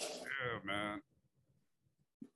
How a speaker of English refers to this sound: Man. Bless you, man. Yeah, bless you.